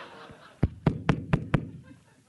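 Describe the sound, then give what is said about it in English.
Five heavy, evenly spaced thumps of a fist pounding on a door, loud, with a low resonant boom to each blow and a quiet room tone around them. “Who's that pounding their fist into the door?”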